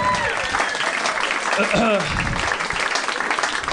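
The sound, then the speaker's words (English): A comedy audience claps and cheers for a comedian's character bit in a dense, steady burst of applause lasting several seconds, with a few voices and whoops mixed into the noisy wash of hands. “Don't applaud it.”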